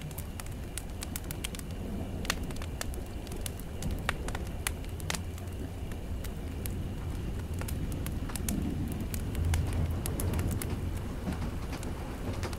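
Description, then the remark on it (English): A campfire crackles steadily, with irregular sharp pops and snaps scattered over a low, constant rumble, with no voices. “Why don't we walk our ears away from this campfire?”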